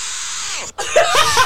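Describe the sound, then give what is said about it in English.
Formula One driver Charles Leclerc's loud, strained yell crackles over a thin, band-limited team radio after crashing out of the French Grand Prix, preceded by hissing static and a brief cutout before the anguished cry. “That's quite the French yell.”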